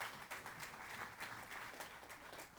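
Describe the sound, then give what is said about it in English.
A crowd applauds for the band, a dense, steady wash of many hands clapping that holds evenly throughout at a fairly soft level, with no talking over it. “Come on, somebody, give the band a round of applause.”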